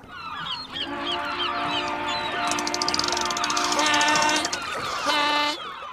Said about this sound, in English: Please sound the horn because it is our boat date.